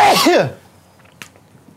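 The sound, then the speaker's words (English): A single loud sneeze bursts out at the start with a brief voiced tone, then fades into near silence with only a faint click afterward. “Bless you.”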